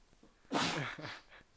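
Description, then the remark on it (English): A single loud, sudden sneeze bursts out, a sharp explosive blast followed by a brief trailing breath, with no talking around it. “Bless you, sir.”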